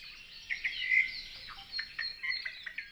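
A Hawaiian hawk (ʻio) gives high-pitched calls that ring out repeatedly over a busy backdrop of bright chirps and twitters. The calls are moderately faint, and no one is speaking.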